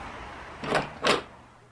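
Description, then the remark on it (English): A front door opens with two short, noisy scraping bursts in quick succession, moderately loud, with no one speaking and only faint room noise around them. “Okay, so I guess we'll have to use the front door after all.”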